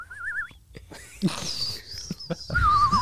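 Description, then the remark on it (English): A person whistles a warbling, bird-like call in two short bursts, one at the start and one at the end, with rustling and faint voices in between. “I got a strong whistle.”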